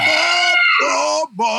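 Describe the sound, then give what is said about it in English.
A person belts out a loud, high-pitched Rebel Yell battle cry, a wavering whoop that rises, breaks off briefly, then starts up again, with no other sound around it. “No, but the Rebel Yell is a real battle cry.”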